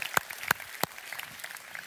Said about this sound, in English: So I want y'all to just say, give yourself a hand of applause, round of applause. Come on.